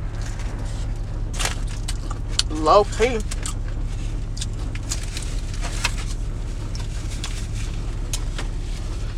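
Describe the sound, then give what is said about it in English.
A steady low engine rumble of an old-school car hums throughout as a man gets in and drives away outside a studio, with a few brief clinks and a short spoken phrase over it. “What kind of car is that? Old school something.”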